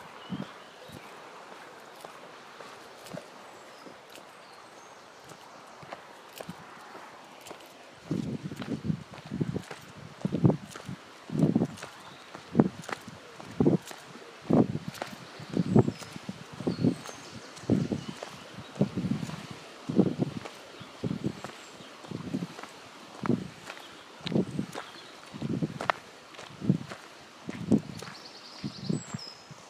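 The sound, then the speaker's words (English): After several seconds of faint wind and a few bird chirps, steady footsteps swish through grass and buttercups, about twenty-five soft, rustling steps at an even walking pace. “And I'm walking on buttercups.”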